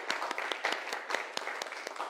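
A group of people applauds, a steady patter of many overlapping hand claps at moderate volume, with sharper individual claps standing out in an irregular rhythm, no voices.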